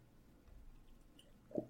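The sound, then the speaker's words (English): Quiet mouth sounds of someone sipping water, ending in a single short gulp as they swallow. No one speaks. “Yes, that's good water.”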